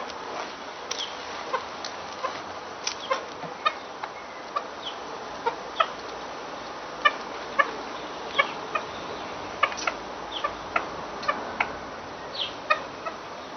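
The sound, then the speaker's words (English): Soft, short clucks from a bird as it eats in a garden repeat irregularly, several per second at times, over a quiet outdoor background with faint rustling. “When it eats, it makes little clucking noises that are very endearing.”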